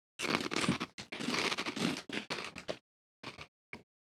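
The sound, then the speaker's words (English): Loud crunching of vegan white cheddar snacks being chewed, dense bursts of brittle crackling that stop, then a few short crunches after a pause; no talking. “Mine was pretty crunchy.”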